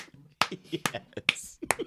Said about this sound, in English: I'm slow clapping you.